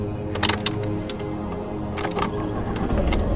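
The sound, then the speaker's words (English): A large SUV engine, just started among abandoned cars in a field, idles with a steady, low rumbling purr, punctuated by a few sharp mechanical clicks and rattles, without any talking. “As the best car bombs require a certain automotive knowledge, and then some, I had a large SUV up and purring like a cat.”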